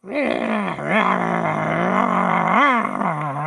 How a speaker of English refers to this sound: And you see coming out of the trees about 20 of these creatures. And they're these hairless rodent-like creatures about the size of a small dog. And they just make this constant, incessant growling noise.